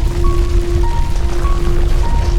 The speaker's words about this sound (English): The attic's timbers groan menacingly, echoing the group's growing fear. Dust and debris rain down around them, accompanied by an increasing urgency.